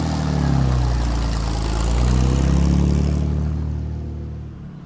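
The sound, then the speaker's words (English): A 1963 Chevy pickup truck engine runs with a deep, steady rumble, swelling a little midway as if given gas, then settling back down. No one speaks. “I like your pickup. What year is it? It's a 63 Chevy.”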